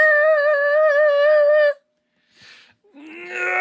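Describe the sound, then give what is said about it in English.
A screeching tire sound effect: a long, loud, wavering high-pitched squeal, then a short pause, a brief hissy burst, and a second squeal that rises at the end. “And the first piece of Kame housekeeping is the world famous UN sanctioned 1 minute roundup screeching tire sound.”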